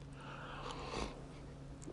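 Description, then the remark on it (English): A single short sip of coffee, a soft airy slurp, quiet and brief against a faint steady hum, with no talking. “As I take another sip of coffee, you know.”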